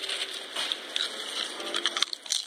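Irregular, crackly crunching from someone eating, a run of sharp bright crackles and snaps that come in uneven bursts with no one talking.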